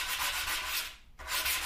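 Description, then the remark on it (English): Sandpaper rasps back and forth against a wooden edge in steady strokes, a dry scratchy hiss that breaks off briefly midway before resuming. No one speaks. “Sanding the edge.”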